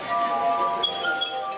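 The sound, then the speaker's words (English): Sustained, shimmering tones ring out from water glasses played by stroking, several pure high pitches overlapping and slowly shifting as the rubbed glass rims sing steadily at moderate volume. “And number 15 are water glasses, and they are played by stroking them.”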